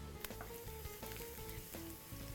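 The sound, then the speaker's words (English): Garlic just dropped into about 5 tablespoons of hot olive oil and stirred, sizzling: a soft, steady crackling hiss with scattered tiny pops, fairly faint, over a low, sustained tonal hum in the background. “And once the olive oil starts to swirl, starting to get hot, just drop in a tiny piece of garlic, and when you see it sizzle, it's ready for the garlic to go in.”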